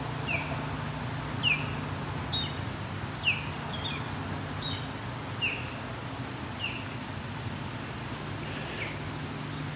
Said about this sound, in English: Of course, just as I go to leave, Osprey starts vocalizing proper Osprey calls. I think he or she is done now. Nope, there we go.